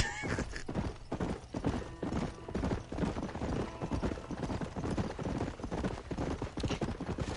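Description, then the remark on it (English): Horse hooves clip-clop in a steady, rhythmic gait as a horse is ridden in a video game, the hollow clatter of hoofbeats continuing throughout with no one speaking. “Riding the horse?”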